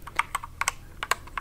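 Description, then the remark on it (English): Quick, irregular clicks of keys being typed on a computer keyboard, fairly quiet, with no voices. “But I'm busy typing lots of other things.”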